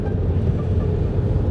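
Steady, low rumble of a car in motion while overtaking a BMW on the way to Valkenburg, Maastricht, with engine and road noise holding at an even, fairly loud level throughout and no voices.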